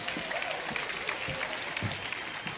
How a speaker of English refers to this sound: Would you give the Lord a clap offering one more time?